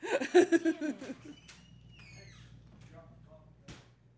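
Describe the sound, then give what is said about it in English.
A voice is heard briefly at the start, then a contractor knocks a couple of separate, fairly faint times on a door, widely spaced against a quiet background hum. “He left his coffee cup out there, so he had to knock on the door for some reason.”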